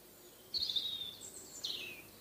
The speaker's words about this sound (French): Vous entendez les oiseaux ? Oui, c'est joli. Oui, c'est très joli.